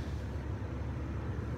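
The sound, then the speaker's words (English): A steady, low whirring drone of news or police helicopters in the distance, an even rumble holding at constant loudness throughout with no voices. “But if you hear whirring sounds in the distance, those are either news choppers or police choppers.”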